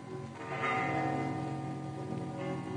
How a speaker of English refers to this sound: Actually, I like church bells. Oh, very well. But on one's honeymoon, they distract the attention.